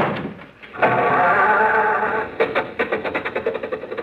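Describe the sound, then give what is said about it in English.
An old car engine coughs and grinds in a harsh, sustained rattle, then settles into a quick, uneven chugging rhythm as it sputters to life, fairly loud. “Now, look, stop with the jokes and start the car, will you?”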